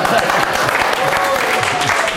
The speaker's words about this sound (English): Well, I think you all deserve a round of applause for joining us.